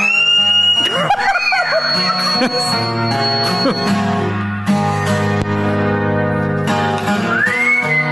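A full rock song plays loudly throughout while high, sliding whistle tones rise and fall over the music, once near the beginning and again at the close.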